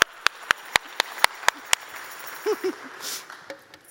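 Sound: audience clapping hands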